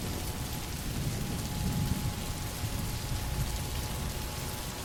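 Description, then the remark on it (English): Heavy rain pours steadily, a dense continuous hiss of drops striking surfaces, fairly loud, with a faint low rumble underneath and no voices. “Imagine, can you feel yourself standing in the pouring rain right now?”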